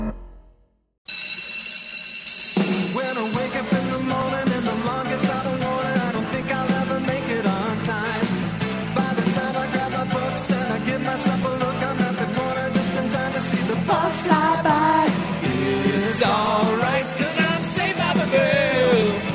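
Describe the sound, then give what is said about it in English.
A bright bell rings at the start, then the upbeat, full-band theme song of the TV sitcom Saved by the Bell kicks in and plays loudly and steadily to the end. “This is Saved by the Bell.”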